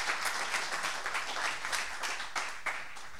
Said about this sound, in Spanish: Bueno, pido un aplauso para Claudio Jacquelín. Le agradecemos su presencia.